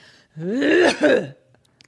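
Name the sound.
imitated cough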